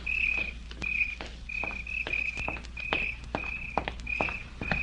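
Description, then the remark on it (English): Steady footsteps of a woman walking home at night at an even pace, each step a sharp crunch, while crickets chirp continuously in the background. No one speaks. “He knew she would walk home that night, and he waited in a clump of weeds until he heard her footsteps.”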